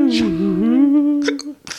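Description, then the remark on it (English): A hiccup: a loud, drawn-out throaty vocal sound, steady in pitch, ending with a couple of quick, sharp gasping catches. “Ooh, nice hiccup.”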